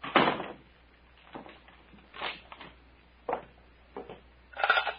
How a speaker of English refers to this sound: And, Doctor, lock the cabin door.